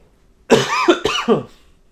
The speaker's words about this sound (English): I had that cough just back there for a while.